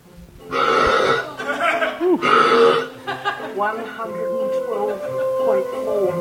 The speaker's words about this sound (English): Has everyone heard the world's loudest burp?